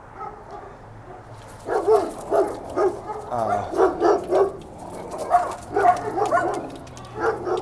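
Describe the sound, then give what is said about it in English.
Dogs bark in quick, repeated bursts mixed with high whimpers and yips, loud, continuing for several seconds with a faint low hum underneath. “The dogs are pretty active today.”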